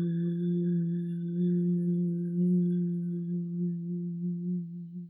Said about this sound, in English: And then we'll just chant this sound, hum, three times. Inhale. And on the exhale, begin to chant, hum.